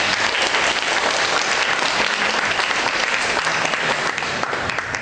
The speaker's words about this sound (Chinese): 那下面我们去热烈的掌声欢迎索达吉堪布为我们做演讲，大家欢迎。